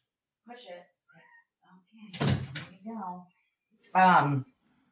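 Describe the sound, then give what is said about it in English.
A female cat meows several times at a door to be let in, with one loud, drawn-out cry near the end. A brief knocking or rattling sound comes midway, and a person's voice may be heard faintly. “I have to let this cat in, dude.”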